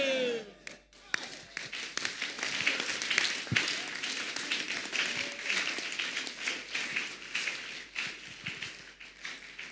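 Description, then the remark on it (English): An audience applauds steadily, a dense wash of many hands clapping at once that holds fairly loud throughout, with a brief voice and a few sharp claps near the start. “Oh, the way you are clapping, I'm sure you are.”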